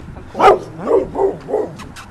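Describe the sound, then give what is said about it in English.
A dog barks four times in quick succession, the first bark loudest and the rest a little softer, with a steady rhythm, a clear sound and no talking. “You know, every time we talk about dogs, there's always a dog that barks.”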